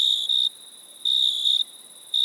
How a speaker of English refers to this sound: Insert cricket sound.